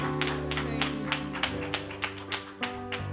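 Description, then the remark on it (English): A church audience claps in steady unison to thank God as they are seated, about three sharp claps per second, over sustained organ-like musical tones with no talking. “Let's clap our hands and as you're seated and thank God.”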